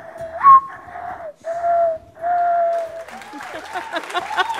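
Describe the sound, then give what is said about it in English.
A person whistles a soft, mournful imitation of a mourning dove's cooing in several drawn-out, slightly falling notes during a bird game on NPR's Ask Me Another, then a burst of audience applause and voices takes over. “Morning Dove.”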